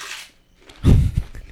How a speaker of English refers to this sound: Loud ass crunching. I know.